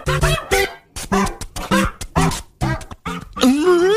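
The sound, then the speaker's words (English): A dog barks loudly in a rapid series of sharp yaps, about eight in a row, then ends with a longer, rising whine, played as a radio intro. “So why don't you said your dog? Why don't we play her intro?”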